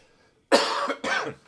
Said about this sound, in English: I have a tickle in my throat, so I apologize for coughing.